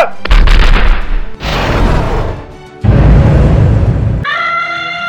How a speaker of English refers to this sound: They had invented the world's first rocket. When you listen to the American national anthem, it talks about the rocket's red glare. That's the same British rockets. The British fired the rockets on the elephants. Ready, aim, fire!